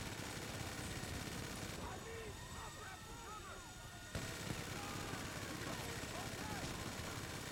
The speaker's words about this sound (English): I heard that. Oh fuck, this helicopter's attacking.